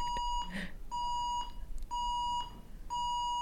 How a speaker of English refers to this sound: Well, that's just the bell, sorry.